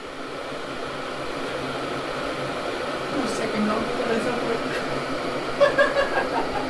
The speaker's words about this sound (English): Yeah, I wanted to have the kettle boiling as the beginning.